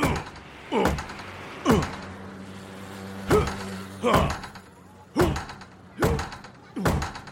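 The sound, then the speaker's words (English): A battering ram pounds a door to force entry in about seven heavy, booming blows at an uneven pace, each impact loud with a short ringing tail, over a low background rumble. “Okay, bring the big red key. Take the door down. Stand back!”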